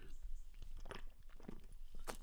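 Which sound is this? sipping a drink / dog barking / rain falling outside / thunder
sipping a drink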